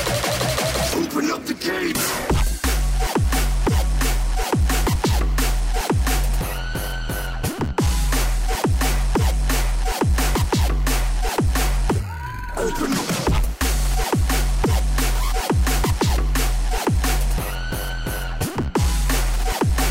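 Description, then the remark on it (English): A loud, driving hard dance EDM track with a pounding, evenly spaced kick drum, dense distorted synths and a brief breakdown sweep before the beat slams back in. “hard dance, I think you said in the show notes then.”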